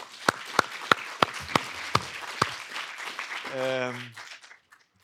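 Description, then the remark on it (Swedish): Applause from a small audience, with a few loud, evenly spaced claps standing out above a softer wash of clapping for about three seconds, then a voice briefly speaks as it fades. “Vi ger en applåd.”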